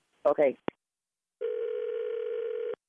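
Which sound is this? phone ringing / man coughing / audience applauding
phone ringing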